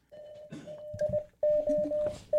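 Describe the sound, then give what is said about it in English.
A steady mid-pitched tone beeps on and off in short and longer bursts, like Morse code, over low rumbling background noise. “Kind of Morse code. Oh, is that SOS.”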